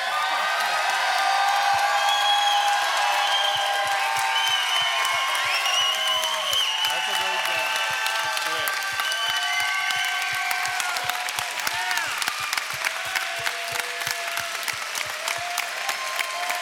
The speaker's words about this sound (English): Would you please stand up and give them a great yell, these two guys?